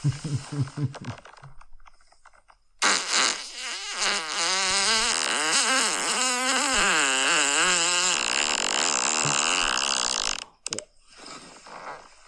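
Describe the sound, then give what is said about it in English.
A man's long, loud fart lasting about seven seconds, starting as a smooth, steady tone and then turning wobbly and bumpy, with a few short muffled sounds before and after. “I love how a lot of these are just boyfriends farting on their fucking girlfriends.”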